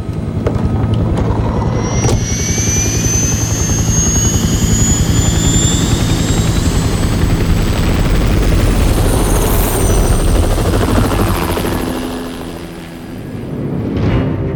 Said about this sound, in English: In the early hours of the 15th of May 1982, three Seakin helicopters lifted off the British aircraft carrier HMS Hermes in complete darkness. On board were 42 soldiers of the Special Air Service.